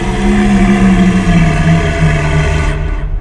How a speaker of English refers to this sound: So they begin walking you over, and everyone stops as you all hear the roar of a dragon turning.